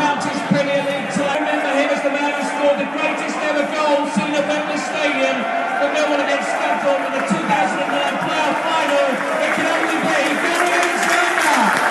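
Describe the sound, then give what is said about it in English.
A large football stadium crowd at a Millwall match applauds as boxing champion Johnny Garton is introduced, dense clapping and cheering sustained throughout at a fairly loud, even level, with a broad murmur of voices underneath. “Johnny Garton, boxing champion, has been introduced to the crowd.”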